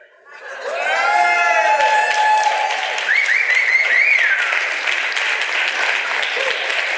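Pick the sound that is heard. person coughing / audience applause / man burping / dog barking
audience applause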